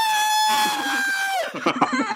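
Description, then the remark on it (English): A person vocally imitates a scream of pain: one loud, sustained, high-pitched cry that holds steady for over a second, then drops and breaks into ragged, sputtering bursts. “And he immediately lets out a scream of pain, where he just goes...”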